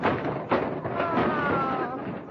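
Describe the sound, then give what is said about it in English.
A Christmas tree is knocked over while a star is being placed on its top from a ladder. It topples with a thud and a sustained rustling clatter of branches and ornaments, fairly loud and lasting a couple of seconds, with a faint ringing tone partway through, and the star breaks. “You've knocked down the tree and you've broken the star.”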